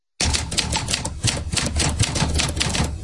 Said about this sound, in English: I mean, you got the typewriter sound effect?